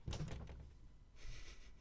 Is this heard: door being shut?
yes